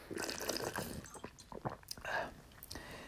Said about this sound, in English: Excuse me, I need some water. I just need a sip here.